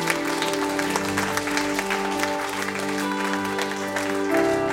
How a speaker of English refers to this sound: Let's clap for Jesus. Amen.